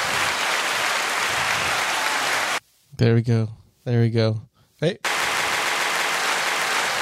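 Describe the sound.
A steady wash of applause, dense and fairly loud, breaks off for a couple of seconds while a voice speaks briefly, then resumes at the same level.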